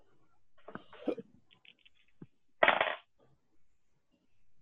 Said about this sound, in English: I'll spend luck on that, if that's the thing. All right, go ahead and roll luck dice.